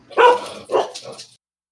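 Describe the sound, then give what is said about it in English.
A corgi barks loudly, a quick burst of two or three sharp, yappy barks over about a second before falling silent. “How'd the corgi get up here? Yeah, he's a loud one.”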